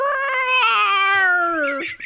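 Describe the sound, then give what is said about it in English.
A person lets out one drawn-out, strained vocal roar lasting about two seconds, loud and raspy, its pitch sliding slowly downward before breaking off at the end. “All right, go ahead and roar.”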